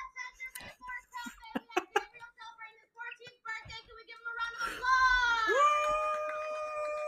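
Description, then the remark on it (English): Monkeys squeaking: a run of short, shrill chirps and squeals, then a louder, sustained high-pitched squeal that bends downward and holds, with faint voices underneath. “You can hear you can hear monkeys squeaking behind him.”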